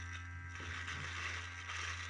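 A Manscaped Lawnmower 3.0 electric body-hair trimmer runs with a steady buzzing hum as it cuts facial hair, its motor drone constant throughout, with a gritty, scratchy layer of cutting and crackling noise on top. No one speaks.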